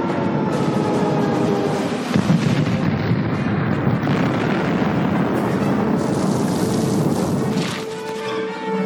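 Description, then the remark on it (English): A separatist ship crashes into the ground on Geonosis, kicking up dirt and dust without fire: a massive, sustained crash and explosion roars for several seconds, a dense wall of rumbling low-end and crackling debris that stays loud throughout before easing slightly near the end. “we've got the big ball separatist ship crashing into Geonosis”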